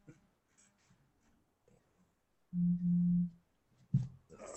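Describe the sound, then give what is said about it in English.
A cell phone vibrating on a desk right next to a microphone, shaking the desk: two loud, low, steady buzzing tones run back to back for under a second, after a stretch of faint murmuring, followed by a short thump. “My cell phone's beeping.”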